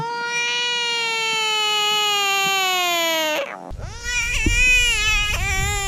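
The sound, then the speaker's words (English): A screaming bullfrog lets out a long, loud, wailing cry with strong harmonics that slowly falls in pitch, breaks off, then resumes in wavering, sobbing bursts much like a crying infant. “So both of you listen to screaming bullfrogs.”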